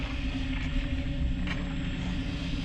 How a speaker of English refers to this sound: but it may have been something a bit like this. Somewhere in the primal ocean, a volcano erupts and kicks off the process of life as we know it.